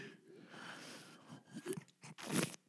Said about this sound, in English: Here, let me do the slurp in your ear thing.